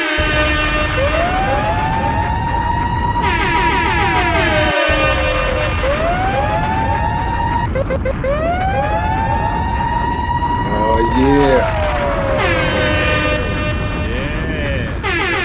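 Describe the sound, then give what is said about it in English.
Loud, repeated air horn blasts layered with rising and falling siren-like wails, filling the whole stretch without pause, while a man's voice briefly speaks underneath. “I want 15 air horns in a row.”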